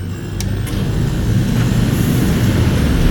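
Lifeboat engines firing for launch from a launch pad on Mars: a loud, steady, deep rumbling roar that builds slightly and holds, with a couple of brief sharp clicks near the start and no voices.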